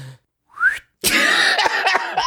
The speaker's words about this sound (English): You got to be able to whistle.